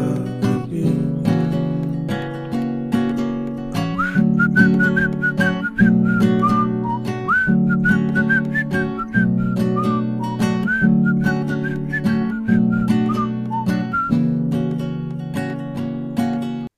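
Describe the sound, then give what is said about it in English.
A bright whistled melody, harmonized in two parts, glides over steady strummed chords with a rhythmic backing. The whistling is clear, running continuously through the middle of the passage. “Honestly, it was really cool when you were harmonizing your whistles, bro.”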